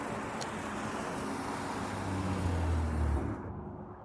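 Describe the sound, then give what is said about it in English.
Dense rush hour city traffic in Seattle rumbles steadily, with plodding vehicles stacked up at intersections and a low engine drone swelling as a heavy vehicle passes before the noise eases off. “I rode a few of the familiar routes up the hills and then down, descending through the rush hour traffic, through the awkward, plodding vehicles stacked up at intersections.”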